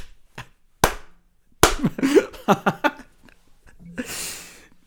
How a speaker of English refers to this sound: I reckon I'd get a round of applause. Slow clap.